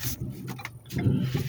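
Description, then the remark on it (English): A car engine rumbles steadily, a low continuous hum with brief higher clicks and rattles over it as the car is moved. “I got to move this car.”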